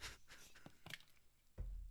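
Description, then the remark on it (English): Someone sputters out a mouthful of water: a few short, hissy spraying bursts, then a dull low thump near the end. Nobody speaks. “You made me spit my water out.”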